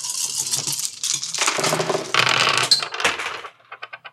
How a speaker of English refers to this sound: As a reminder, you roll 1d6 for every empty trouble box that you have, and you want to roll high. Let's get some rolls.